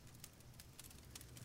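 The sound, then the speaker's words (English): A steady fire crackles and pops with irregular sharp snaps over a continuous low rumble, with no voices present. “And as you rest there, eyes closed, you can hear the crackling of fire.”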